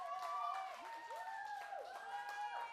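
An audience applauds steadily, a dense wash of clapping lasting the whole stretch, with whoops and cheering voices sliding up and down in pitch above it.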